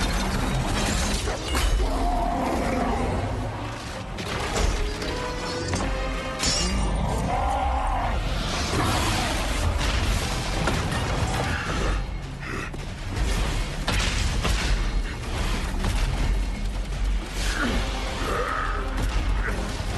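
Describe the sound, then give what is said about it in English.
Harsh, guttural orc screams and growls from the video game World of Warcraft, loud and repeated over twenty seconds, layered with constant crashing, clattering battle noise and no clear speech. “You heard that guttural sound. That's World of Warcraft, and those are the sound of the orcas. Orcs.”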